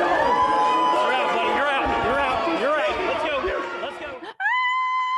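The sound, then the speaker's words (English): A loud, dense rally crowd screams and cheers, many overlapping high voices rising and falling for about four seconds, then it cuts abruptly to a steady, sustained tone. “I love the screams.”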